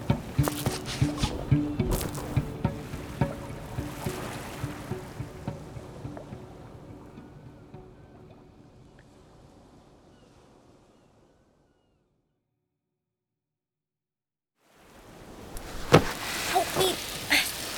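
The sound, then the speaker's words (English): A motorboat churns across open water, engine droning under splashing waves, then fades away into silence before the watery rush swells back in at the end. “I just stitched up a dude's guts on a moving motorboat.”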